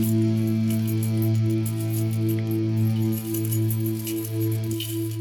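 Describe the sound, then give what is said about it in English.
A bunch of keys jangles and clinks in quick, irregular shakes over a loud, steady humming drone that holds throughout, with no one speaking. “He's got too many keys. Got the keys.”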